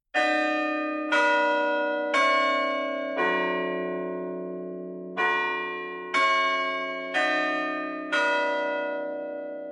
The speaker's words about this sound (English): He heard the first note of his grandfather clock's hourly song and whispered, "No." Then, "No!"